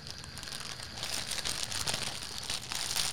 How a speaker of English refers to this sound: now I want you to open this. You got scissors? Come on, you fucking bitch. Open the package.